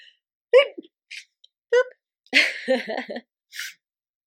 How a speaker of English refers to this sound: What a sneeze is such a, it's such like a roller coaster of energy, just like shoots through you.